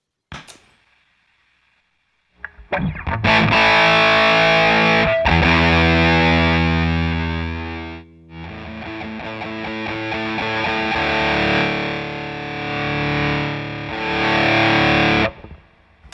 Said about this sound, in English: Okay, so now I'm gonna, it does add some hiss, obviously, as we can hear. Let me dial back the fuzz using the blend control on the channel itself.